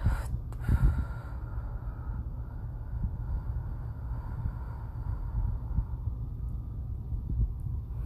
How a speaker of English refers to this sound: So for four counts, let's breathe in through our nose and exhale for eight.